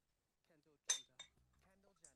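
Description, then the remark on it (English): A bright, ringing clink of glasses touching together in a toast, followed by a softer second clink, with people's voices murmuring quietly around it. “We haven't cheers to the episode yet. Let's do that now before we get to cheers.”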